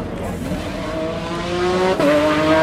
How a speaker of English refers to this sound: Here's another sound. Le Petit Train. You know those sort of holidaymaker tourist trains that are like little tractors that tow three little carriages for people on them? Listen, there he goes.